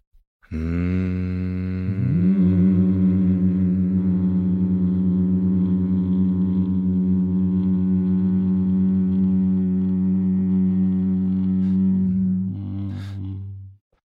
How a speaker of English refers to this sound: We're going to, when we get, before we eat, instead of saying anything or doing anything, I'm going to say, let's hum till we feel it in our teeth. Can we try that one more time?